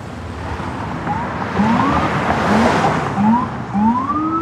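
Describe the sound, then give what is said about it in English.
Several police sirens wail with repeated rising sweeps over a steady roar of heavy traffic, moderately loud, as a police motorcade of black SUVs with lights on, a van, armored NYPD trucks, an ambulance and many police cars passes across the Brooklyn Bridge. “We've got black SUVs with the lights on, a van, armored NYPD trucks, an ambulance, tons of cop cars.”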